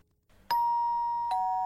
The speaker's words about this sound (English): Oh, there's the doorbell.